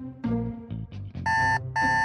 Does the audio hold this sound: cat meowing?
no